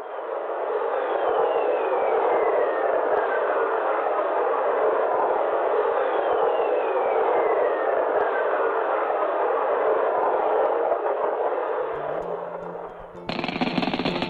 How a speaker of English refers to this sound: Whistlers are an audio representation of a lightning strike moving away from the planet into the plasma above. These whistlers, along with images of Jupiter's atmosphere lighting up, provided the first proof of lightning on a planet other than Earth.